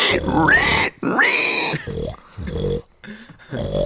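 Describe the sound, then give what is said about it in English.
A person imitates a pig, producing a series of loud, nasal snorting oinks and grunts in rapid bursts separated by brief pauses. “I can do a pig.”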